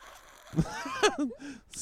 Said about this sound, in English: Oh, cracking beers, bro.